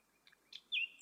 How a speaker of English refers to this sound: Whenever people ask me why I play music with nightingales, I quote them these lines from the Persian poet Sadi.